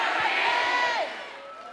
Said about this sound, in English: Somebody scream, never again!